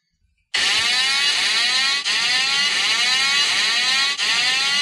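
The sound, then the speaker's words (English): A classic Boeing 737 autopilot disconnect warning: a loud, harsh electronic wail that warbles continuously, starts abruptly after a moment of silence, and repeats in roughly two-second cycles with no voices. “That's the autopilot disconnect on the classic 737.”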